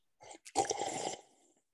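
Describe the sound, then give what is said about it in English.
A quick sip of hot coffee: a brief airy intake, then a louder hissing slurp lasting about a second that fades out softly. No talking over it. “Just me sipping my coffee.”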